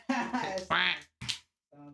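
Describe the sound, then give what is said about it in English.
A person imitates a duck, letting out a few short, nasal quacking bursts with brief gaps between them and a softer final quack, used instead of a bleep to cover cussing. “We do quack noises instead of a bleep when we were cussing.”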